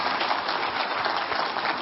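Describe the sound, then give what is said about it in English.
An audience gives the Lord a hand clap of thanks, clapping in a dense, steady wash of applause, many overlapping claps blending into a continuous crackle at an even, fairly loud level with no speech. “If you believe it by faith, give the Lord a hand clap of thanks.”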